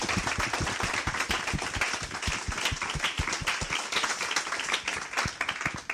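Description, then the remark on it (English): An audience applauds steadily, many hands clapping in a dense, sustained patter of sharp claps at fairly even loudness throughout, with no one speaking over it. “Can we just have a little clap for the questions?”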